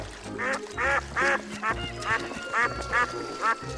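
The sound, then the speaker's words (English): A duck quacks repeatedly at a farm pond in a steady series of about seven nasal calls, clear, with faint low background rumble and no talking. “There are all sorts of fish in here, plus ducks and other aquatic animals.”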